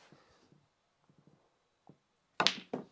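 A few soft, scattered knocks give way to a loud clatter as a snooker cue ball drops and rattles into the pocket, ending with one last sharp thud.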